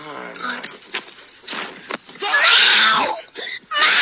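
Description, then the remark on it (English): A cat, put on a microphone, yowls loudly in a string of drawn-out, wavering cries, rising and falling in pitch, with the harshest, most sustained wail near the middle and another loud yowl at the end. “Put my cat on the mic.”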